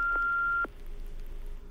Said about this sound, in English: But do feel free to leave us a message and tell us about your dream. We catalog every dream we hear about and study them, so share yours with us in the name of science. Here comes the beep.